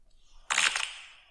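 A single wet fart: a sudden, loud, crackly sputter that trails off over about a second, with nobody talking over it.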